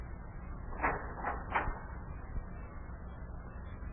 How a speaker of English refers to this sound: Well, go on, lad. Open the door to Yuki's office and walk right on in.